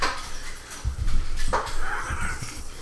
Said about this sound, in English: I'll tell you who is here. It's the dogs.